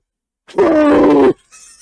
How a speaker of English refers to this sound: That's like the weirdest... One of the weirdest sneezes that I've heard.